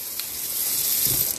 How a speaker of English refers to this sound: Four score and 7 years from now, the teapot will be full of water.